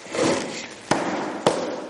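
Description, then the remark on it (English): Two sharp, solid knocks of a hand banging on a table, about half a second apart, heard over a steady murmur of room noise. “Bangs on the table.”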